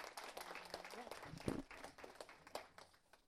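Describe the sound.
An audience at a panel discussion applauds the moderator with dense, steady clapping that holds at moderate volume for a few seconds, with a brief vocal cheer or voice rising above it midway.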